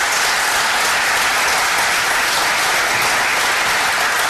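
Sustained applause from a sizable audience for candidates at an evening event at a church, steady and loud throughout, a dense wash of many hands clapping with no single claps standing out and no voices on top.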